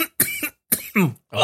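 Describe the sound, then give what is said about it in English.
A person makes a short series of rough, raspy cough-like bursts, about four in quick succession with brief gaps, imitating a cough by the character Naito. No words are spoken. “Did Naito cough?”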